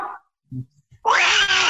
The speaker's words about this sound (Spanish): Azrael. Era el gato de Gargamel.